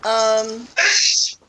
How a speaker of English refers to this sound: Bless you, whoever's sneezing.